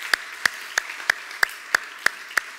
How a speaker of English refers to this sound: Could you give the Lord one more hand clap of praise?